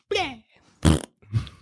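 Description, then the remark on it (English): Someone blows a short, wet raspberry-like fart noise with their mouth, a brief vocal burst between two other quick voiced sounds, fairly loud. “A little gassy fart.”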